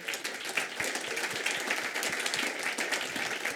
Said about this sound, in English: Thanks to all speakers for this interesting journey through institutions, and let's give them a hand of applause.